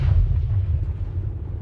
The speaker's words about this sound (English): And so the battle rages on. The sound of gunfire and explosions fills the air. The sky is filled with the smoke and the dust of battle.